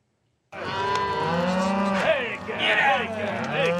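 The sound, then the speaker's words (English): A herd of hundreds of cows, most of them mothers with new calves, moos loudly and continuously during the Green River Drift cattle drive in Wyoming, several overlapping bellows and calls blending into a steady, crowded chorus after a brief silence. “Just after dawn, one Saturday in June of 2021, I'm trying to help Wyoming rancher Albert Summers and his team move hundreds of cows, most of them mothers with new calves, in a cloud of dust toward high green pastures where they'll graze all summer.”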